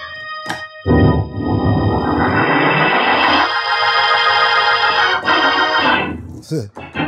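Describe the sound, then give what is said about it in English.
A Hammond B3 organ blares loud and screaming, a sustained chord swelling upward in pitch with a bright, buzzing edge, holding strong for several seconds before cutting off. “I feel like at times you just make the entire thing scream like a human voice.”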